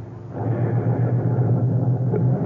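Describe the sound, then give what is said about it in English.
A car drives away, its engine rumbling steadily, a continuous low drone that holds its loudness throughout without fading, with no voices. “I stood on the sidewalk and watched him drive away.”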